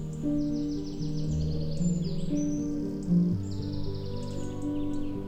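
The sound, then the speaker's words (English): Birds sing and chirp in quick repeated trills throughout in the trees on Brandon Hill, over a steady low background hum, with no talking. “As the birds continue their watch over Brandon Hill”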